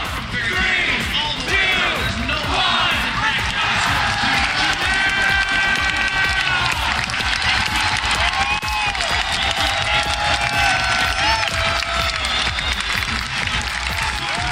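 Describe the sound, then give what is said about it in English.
A huge esports arena crowd cheers wildly for G2's 3-2 win over Mocket: a dense, sustained roar of shouting and applause with high whoops and screams rising above it, steady and loud for the whole stretch. “The crowd went totally crazy for that.”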